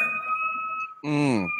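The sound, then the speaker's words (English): An emergency siren holds a steady, high tone throughout, with a brief burst of voice breaking in near the end over the continuing wail. “I hear the siren right now, so I'm going to go into it.”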